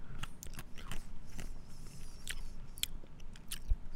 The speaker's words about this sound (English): I'm eating ice cream right now. Oh. They made the ice cubes ice cream. Sorry, guys. That was vanilla.